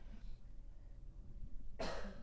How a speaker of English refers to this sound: Yeah, she just coughed.